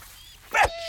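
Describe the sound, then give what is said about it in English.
A dog, Rolo, gives one short, sharp bark, fairly loud, against a quiet background that settles into a faint steady hum afterward. “Yeah, that's Rolo, my new dog.”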